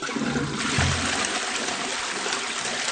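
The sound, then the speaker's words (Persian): A toilet flushes, a loud rushing gush of water that swells early and then settles into a steady churning drain, with no voices. “کشیدن سیفون.”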